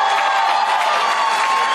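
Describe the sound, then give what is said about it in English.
A crowd cheers and applauds Glenn Youngkin's speech in a steady, loud roar of mingled voices and clapping that holds without a break for just under two seconds. “And listen to the crowd.”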